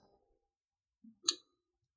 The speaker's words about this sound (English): And now I'm going to see, just excuse my typing because I have to get to the next question, and I'll move on to the next one.